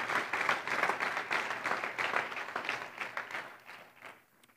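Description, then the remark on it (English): An audience at the Sanctuary Community Church in Hartsel applauds to welcome guests, many hands clapping in a dense, steady patter that holds strong for about four seconds before tapering off into quiet. “This hand clap is just for you, and we welcome you.”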